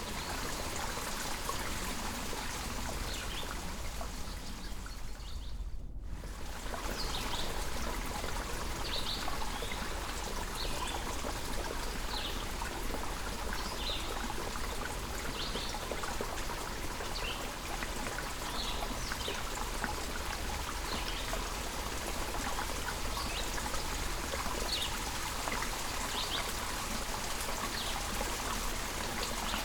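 Steady flowing mountain spring water trickles and babbles continuously, a broad bright wash of sound with small splashes, briefly dipping into a gap near the start before resuming, with faint bird chirps above.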